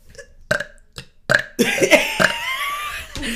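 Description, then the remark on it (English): A person burps on command: a rapid series of short burps fired off back to back, fairly loud, followed by a longer, rougher burp that trails off with noisy breath at the end. “Can you make yourself burp?”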